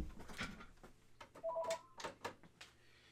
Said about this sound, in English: Excuse me on that phone, I'm going to get that real quick.